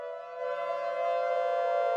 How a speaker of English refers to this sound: Of course, weekly air raid alarm testing, each and every Monday at noon, wailing across the city, helped to reinforce this commitment.